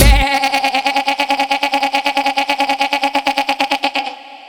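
A loud goat bleat, drawn out for about four seconds and heavily processed with a fast, pulsing tremolo and a buzzy electronic edge. It ends abruptly, with no talking.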